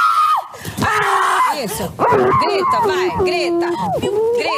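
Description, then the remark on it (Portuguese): A person screams loudly and frantically, shrill wailing cries rising and falling in pitch almost without pause, with other agitated voices overlapping. “Grita, vai, grita, toma.”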